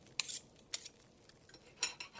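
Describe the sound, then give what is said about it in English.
Mrs. Cratchit's carving knife scrapes and slices into the breast of a roast goose in several short, bright metallic strokes with small pauses between them, fairly quiet, with no voices. “It was succeeded by a breathless pause, as Mrs. Cratchit, looking slowly all along the carving knife, prepared to plunge it into the goose's breast.”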